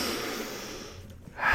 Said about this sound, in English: And then you got to sniff your shoes. You know what I mean? If you guys don't sniff your shoes, you're missing out. You get them out of the box and you just do one of these.